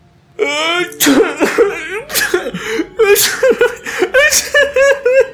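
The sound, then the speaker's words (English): A voice acts out a story character's wavering, whimpering sobs broken by several sharp, breathy sneezes, about four bursts in quick succession, fairly loud, with no other sounds around it. “As Leonard pitifully sobbed and sneezed over and over again,”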